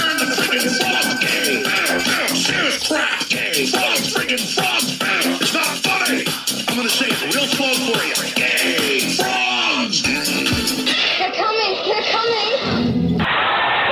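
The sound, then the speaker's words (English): A dense, loud crowd of many overlapping voices yelling, shrieking and swearing, with jostling and scuffling noises, sustained throughout as people push and scream in a packed Black Friday shopping rush. “The shoving. The screaming. The swearing.”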